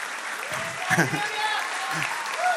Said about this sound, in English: In fact, today I have a high-ranking soldier with us. And I think we should give her a round of applause.